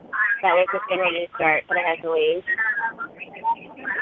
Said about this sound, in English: I'm getting the echo. Is somebody on speakerphone or anybody listening live to the show?